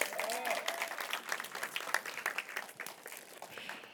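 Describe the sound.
A crowd breaks into steady applause, many hands clapping in a dense, continuous patter with bright sharp claps throughout, and a brief voice audible at the start.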